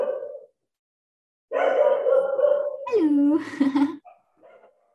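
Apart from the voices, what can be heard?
dogs barking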